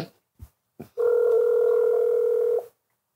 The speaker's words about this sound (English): Let me see if I can make one more phone call. Okay. Sometimes it's the second call that do it.